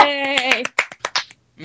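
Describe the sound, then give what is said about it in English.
A brief voiced tone, like a short cheer, gives way to four or five soft, sharp hand claps at an uneven pace, light and quiet, with short pauses between them. “I can't do that, because I'm not very good at that kind of thing, so I'm just gonna quietly clap my hands, I guess, just be like, yay, we did it.”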